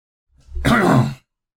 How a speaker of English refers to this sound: I got to clear my throat and get a drink of coffee here.